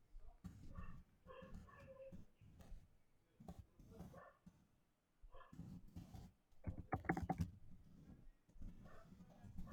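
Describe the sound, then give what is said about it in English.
A dog barks repeatedly in short, loud bursts at someone in the street, with brief pauses between volleys and a sharper, higher cluster of yaps near the middle. “There's someone in the street and the dog's barking at them.”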